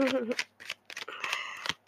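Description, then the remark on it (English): Quick papery riffling of tarot cards being shuffled, a few short bursts in close succession, with a voice speaking over the start. “But they're getting shuffled now.”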